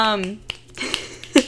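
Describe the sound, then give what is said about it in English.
A brief voice is followed by three sharp, dry finger snaps spaced unevenly about half a second apart, each a quick bright click, the last one slightly louder. “Get some snaps or something.”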